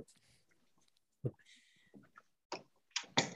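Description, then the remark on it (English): A door is pushed shut with a dull low thump, some shuffling, and a sharper latching clack near the end. No one speaks. “I got to shut my door real quick because my dog's about to run in here.”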